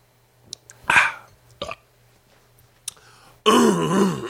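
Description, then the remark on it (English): Someone clears their throat before singing a chant: a short harsh rasp, a brief second catch, then after a pause a louder, longer gravelly throat-clearing that runs to the end. “I gotta clear my throat.”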